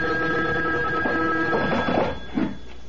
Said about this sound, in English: A phone. At this hour? I'll get it. You stay here.